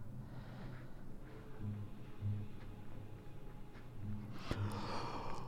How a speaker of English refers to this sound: Oh, excuse me, yawning. It's 5 p.m. and I'm yawning. Sorry.